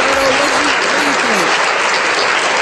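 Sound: applause sound effect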